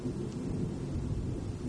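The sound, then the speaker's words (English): A long, low rumble of rolling thunder during a thunderstorm with lightning under a tornado watch fills the whole stretch, steady and heavy with no clear break, with a faint hiss of rain underneath and no voices. “That is a long thunderstorm, or a long thunder clap, so to speak.”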